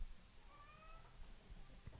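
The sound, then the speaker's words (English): A single short meow from Monty, a talkative pet cat, fairly quiet, rising briefly over a low background rumble with no one speaking. “cat Monty is probably the prettiest cat I've ever seen in my life”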